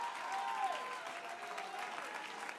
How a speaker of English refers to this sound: I'm telling somebody in here tonight, get your confidence back. Oh, clap your hands right now.